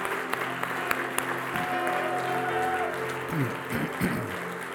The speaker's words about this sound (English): Well, now let's give the Lord a huge hand clap. Thank you, Lord.